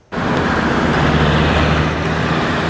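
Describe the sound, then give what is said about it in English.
Steady, fairly loud roar of downtown Vancouver street traffic around the art gallery, with lengthy delays after a water main break at Georgia and Hornby closed several lanes; low engine rumble drones underneath, starting abruptly and holding constant throughout without any voices. “Lengthy traffic delays in downtown Vancouver around the art gallery today.”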